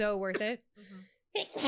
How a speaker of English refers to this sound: Bless you. Oh, my God. That's the terpenes, I'm told.